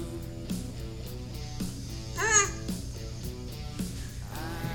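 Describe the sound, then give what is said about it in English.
A baby boy babbles in a backyard, playing with its echo, in short, high-pitched coos with swooping, wavering pitch, one louder burst midway and a softer one near the end, over a steady humming background. “Baby noises.”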